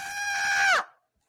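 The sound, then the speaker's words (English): A voice imitates a screaming goat, a rough interpretation of the giant screaming goats given to Thor: one loud, shrill, strained cry held steady for most of a second, then bending downward in pitch as it cuts off into silence. “It's like the screaming goats, whatever, and they're just giant screaming goats.”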